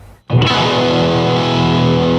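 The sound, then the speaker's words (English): After a brief quiet moment, a clean guitar chord through a Hiwatt amplifier rings out loud and sustained, with a little spring reverb and a tiny bit of tape delay thickening the steady, shimmering tone. “That's like the bass tone, which is just a little clean spring reverb and a tiny bit of tape delay.”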